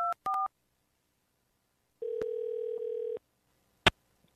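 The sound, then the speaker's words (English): Two quick keypad dialing beeps, then a single steady telephone ringback tone lasting about a second as an outgoing phone call goes through, ending with a sharp click. No one speaks. “before we talk about that song, I got to make a quick phone call.”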